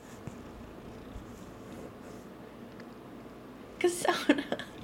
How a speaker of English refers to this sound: Now she's rubbing her face on the mic. This is cat ASMR. I can hear her little purrs.